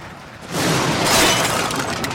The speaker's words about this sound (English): White light flashed through the attic window, and I felt the whole house rattle. The lightning bolt must have struck eerily close.